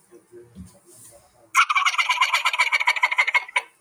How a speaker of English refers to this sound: And you might throw a Jake yelp or a gobbler yelp in there. And then throw that gobble in there.